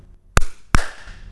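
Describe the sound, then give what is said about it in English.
Two sharp hand claps, a bit under half a second apart, made to test a room's acoustics, each followed by a lingering reverberant tail as the sound echoes around the room. No voices. “So if I clap a couple times here, listen to see if there's an echo.”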